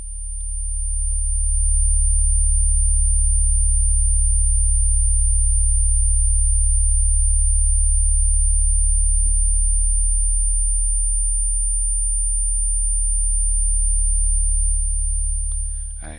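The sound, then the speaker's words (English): A steady, piercing 9,191 hertz tone holds without a break for about sixteen seconds, layered over an added loud, deep low-frequency humming rumble. No one speaks. “This is 9,191 hertz. I added a low frequency so it'll vibrate physically on the body too.”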